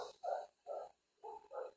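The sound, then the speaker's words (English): A dog outside, waiting to be let in, barks four times in two quick pairs, each bark short and fairly muffled, with no talking over it. “She'll shut up. Alright, hold on a fucking second, guys. I gotta let the dog in while the show's going.”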